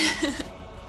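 A single sharp sneeze bursts out, a quick breathy blast lasting under half a second before fading.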